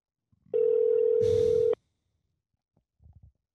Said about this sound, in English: Fucking hell, here we go. Come on, pick up the phone.